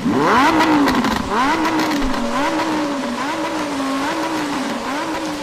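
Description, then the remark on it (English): A Hayabusa engine revs repeatedly, its exhaust note rising and falling in a steady wavering pattern, loud, with no voices over it. “Is that an exhaust of your car? Oh yes, you can hear my engine, can you?”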